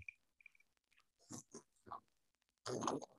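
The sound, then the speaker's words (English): Sipping of coffee: a few short wet slurps and gulps with pauses between, ending in a louder, longer slurp. No one speaks. “Take a sip.”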